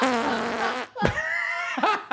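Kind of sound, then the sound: sound effect, fart sound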